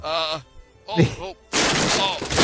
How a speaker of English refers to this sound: Crap. I didn't mean to knock over your cart, sir.